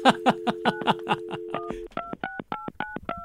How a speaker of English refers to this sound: I love dialing sounds.